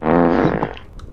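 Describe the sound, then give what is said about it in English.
A voice imitates a loud, buzzy fart, one sustained raspberry blast lasting about a second that sputters and trails off at the end, prominent. “as he hits him and turns around, I want to cast Minor Illusion and make it like a really, really loud fart sound.”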